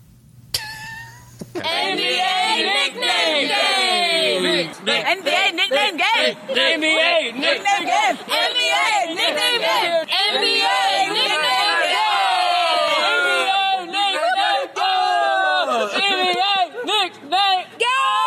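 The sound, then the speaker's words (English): A loud, busy jingle for the NBA Nickname Game segment starts after a brief quiet moment and runs for about seventeen seconds, packed with overlapping, chattering voices that swoop up and down in pitch like a crowd. “Pause for jingle.”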